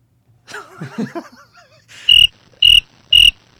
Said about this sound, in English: That's, those are crickets.